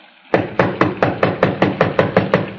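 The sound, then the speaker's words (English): Someone on the porch raps on the wooden door of a small redwood house in the San Fernando Valley on a rainy night, about ten times in a quick, steady rhythm. The knocks are loud, with no voices, just a brief quiet moment before the first knock. “Better try it again.”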